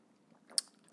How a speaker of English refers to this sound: And hang on 1 second. I'm just going to give you a cheers. That was just a sip of coffee there.